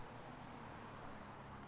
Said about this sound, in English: Apparently, we're just walking into traffic.